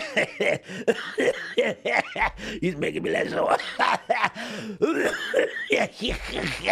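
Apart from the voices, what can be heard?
coughing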